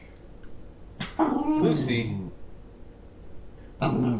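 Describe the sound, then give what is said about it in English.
A dog named Lucy lets out a sharp bark that slides into a drawn-out, wavering whimper, then falls quiet before another abrupt bark at the very end, over a low background hum. “Lucy's not ready to be a podcast dog.”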